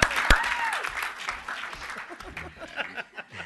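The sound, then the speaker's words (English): An audience breaks into applause as Ken Fair, president of Nerdcore Entertainment, is introduced on a panel, a dense patter of many hands clapping with a few cheers mixed in, loud at first and then thinning out over a few seconds. “You can clap.”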